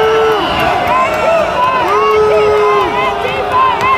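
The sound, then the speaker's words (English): A man screams "Antifa, Antifa, Antifa" in long, strained bursts over a dense, loud crowd of yelling rioters, the commotion continuous throughout. He wears a helmet with a Trump sticker on the back, holds a stick and pounds on a window. “You hear him screaming, Antifa, Antifa, Antifa.”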